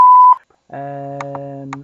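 A short, loud, pure censor bleep sounds alone, followed after a brief gap by a longer, buzzier electronic tone punctuated by a few clicks, with no talking.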